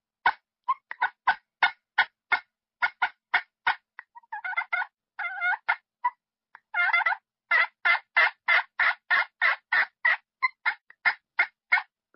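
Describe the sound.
A turkey pot call, played with a diamond wood striker, imitates a hen: steady runs of sharp clucks, broken midway by rolling, fluttering purrs, fairly loud with no talking.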